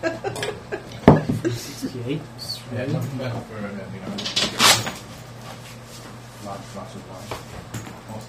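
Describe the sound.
A cupboard door knocks open with a sharp clunk, followed a few seconds later by a brighter rattle as a wine glass is fetched from inside, with people talking quietly throughout.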